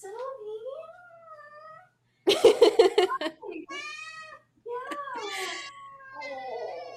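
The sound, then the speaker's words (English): A cat named Sylvie meows repeatedly: a series of long, drawn-out, wavering meows with short pauses between them, plus a louder, rougher burst partway through. “Oh, thanks for sharing your thoughts, Sylvie.”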